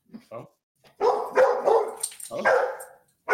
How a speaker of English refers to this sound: The dog. Gingy the dog.